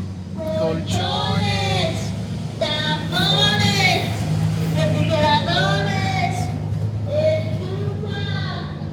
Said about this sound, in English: and I'm going to wait for this, for the truck to go by.